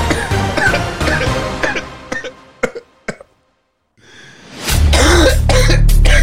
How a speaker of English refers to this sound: That cough was weed, by the way, and not Rona.